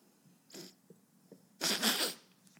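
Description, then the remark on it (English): A brief sniff, then a loud, breathy sneeze bursts out and trails off, with no talking around it. “Sorry, I have the sniffles.”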